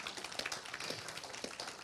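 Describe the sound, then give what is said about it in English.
A church audience claps together in a dense, steady patter of many hands, fairly soft and continuous for a couple of seconds with no voices over it. “Can we give God a hand clap for that, church?”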